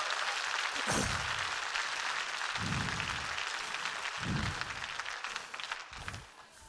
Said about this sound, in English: Now give him a hand clap of praise for keeping covenant.